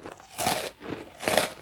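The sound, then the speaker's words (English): Crunchy chewing as two penguins eat their lunch, with two bursts of crisp, crackly bites in a loose rhythm and quieter chewing in between. No one is talking. “This left just two penguins out on a walk, Speedy and one named Munch, and at Munch's insistence they halted the walk and both penguins sat down for their lunch.”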